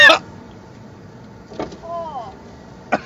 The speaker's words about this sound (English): Roll your window down. Let it air out a little bit.